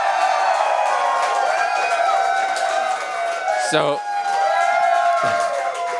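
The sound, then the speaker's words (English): A large live audience at a concert at the Hollywood Bowl cheers and shouts continuously, a loud, dense wall of many voices sustained for the whole stretch, with a brief spoken word near the start. “And we're actually on stage at a concert right now. And we're Everybody cheer. Everybody cheer.”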